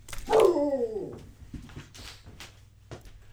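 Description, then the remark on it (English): A dog named Pants lets out one loud, drawn-out angry bark that slides down in pitch, followed by a few fainter scuffs and short noises in otherwise quiet surroundings. “handling his dog, who gets so angry about Chicago restaurant corruption”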